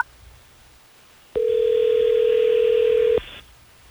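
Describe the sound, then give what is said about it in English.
A telephone dialing tone sounds as the Hot 101.5 radio hosts place a phone call, one loud, steady electronic beep lasting almost two seconds, starting and stopping abruptly against a quiet background hiss. No one speaks. “Well, let's try to get Dennis on the phone, Wendy, so we can figure this out.”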